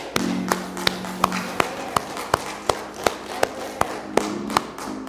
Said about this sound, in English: So as we give the Lord another hand clap of praise, let us praise him one more time